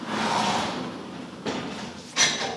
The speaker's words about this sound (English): Okay, so I will open the door and the horse will run in.